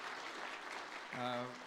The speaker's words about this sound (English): We're grateful for the Global Outreach Committee that's put on an amazing conference this week. Can we give them a hand clap of thanks? They've done an awesome job.